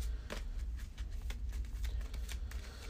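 A deck of cards being shuffled during a card game, a rapid series of soft, crisp papery flicks and slaps over a low background hum, with no voices.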